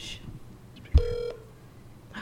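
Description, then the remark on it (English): A sharp click followed by a single short, steady electronic beep from a phone being dialed to call a grandmother, lasting about a third of a second over faint background hiss. “Maybe we could just call her.”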